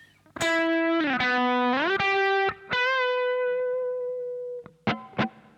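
A dry, distorted electric guitar plays alone, the third guitar part of a track with no effects: a few picked notes with upward pitch bends, a long sustained note that slowly fades, then two short, sharp stabs to finish.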